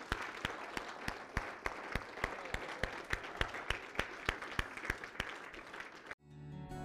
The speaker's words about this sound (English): Guys, could we give God a big hand clap for what He's done today?